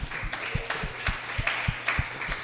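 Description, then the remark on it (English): Scattered, uneven clapping from a small show audience, a round of applause called for by the host: a steady run of sharp hand claps with soft thumps underneath, moderately loud and with no one talking. “Hey, real quick, round of applause.”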